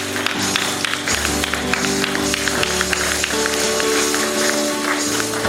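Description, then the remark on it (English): A crowd on its feet claps steadily and densely for Jesus, a continuous patter of many hands over sustained musical tones, without a clear shared beat. “Let's give a hand clap to Jesus for what he's done and what he's continuing to do.”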